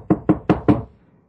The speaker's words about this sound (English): The one before the last one is there's a knock at the door.